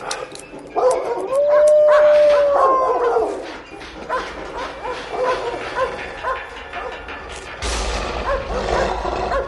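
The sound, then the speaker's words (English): A dog jumping on a man and licking his face lets out a drawn-out, wavering howl mixed with excited barks and yips, fairly loud, over a busy background of commotion and rustling. “So the dog jumps on him and is licking him and licking his face”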